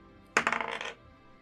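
Dice rolled onto a table for an investigation check: a sudden clatter of bright, rapid clicks and rattles that tumbles for about half a second, then settles into quiet, with a one rolled. No voices.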